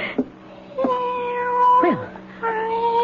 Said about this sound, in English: Quiet out there, cat. Cat, go away. Honestly, cat, I will not let you in my house. Well, where are you? After all that racket, where are you? Cat? Gone off to howl at somebody else. Well, good. All that meowing